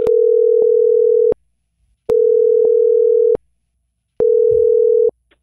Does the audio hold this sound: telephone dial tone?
yes